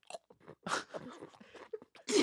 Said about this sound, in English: Because I do the lozenges. Yes, I chew it.